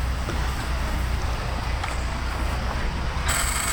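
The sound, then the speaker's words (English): Steady low rumble and wind-like noise, then a sharp, high-pitched electrical buzz from the ignition spark coil of a vintage 20-horsepower engine with a crank on the front switches on near the end and holds steady. “See, now you can hear that buzzing sound. That's the ignition. That's the spark coil, yep.”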